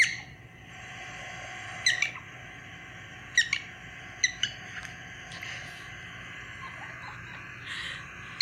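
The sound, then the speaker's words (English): An excited female prairie dog at the Kansas Wildlife Exhibit gives several short, sharp, high-pitched screaming calls at irregular intervals, with a few fainter chirps in between, over a steady low background hum. No one speaks. “So that's what a prairie dog sounds like.”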